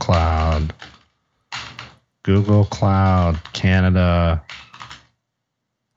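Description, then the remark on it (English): Rapid clicking of keys on a computer keyboard as someone types to go to Google Cloud, mixed in with a person speaking a few words as they type. “I mean, if we go to Google Cloud right now, let me type this into a keyboard.”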